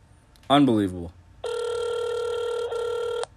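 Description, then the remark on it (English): A short vocal sound comes first, then a steady electronic telephone ringback tone hums for nearly two seconds, loud, with a tiny break near its end, while calling a man who is not answering the phone. “He told me to call him, and now he's not answering the phone.”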